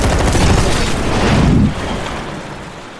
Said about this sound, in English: Oh, for God's sake, just shoot the boat.